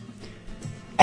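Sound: cough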